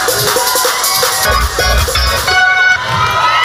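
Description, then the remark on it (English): An audience member at a church service shouts amid a loud, continuous swell of crowd voices, with excited calls and cheers blending together for a few seconds, energetic. “Somebody over there shouting.”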